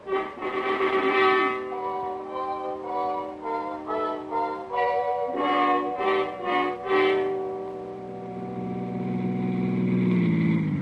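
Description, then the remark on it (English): A car engine hums and revs as the vehicle rolls slowly into an alley to park, its pitch rising and falling in steps before settling into a steady, droning idle. No one speaks. “Usually no parking places on the street, so I leave the car here and go in the back way.”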